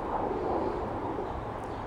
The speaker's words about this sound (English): And somebody's flying a jet into our little airport that shouldn't be doing that. That's illegal-ish.